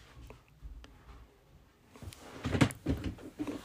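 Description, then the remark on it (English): A door is pushed shut, with some low shuffling and handling first, then a cluster of louder knocks and a latch clatter in the last second and a half, no voices. “Just gonna close the door because I hear my family coming home.”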